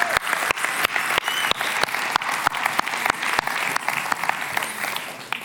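An audience applauds steadily for several seconds, a dense, even wash of clapping with sharp individual claps punctuating it at a regular beat. No one speaks.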